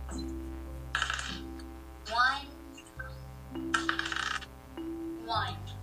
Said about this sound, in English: It's dice!